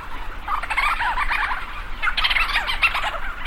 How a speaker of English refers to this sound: Thousands of leech storm petrels circle overhead, swooping and calling into the dark. Lang Elliott captured these sounds for his CD he calls ….